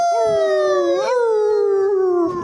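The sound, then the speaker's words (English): A person imitates a dog's howl in one long, loud wail that holds a steady pitch, lifts briefly partway through, then slowly sinks and fades out. “And bears don't bark.”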